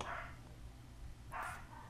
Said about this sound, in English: Oh, I hear dogs barking.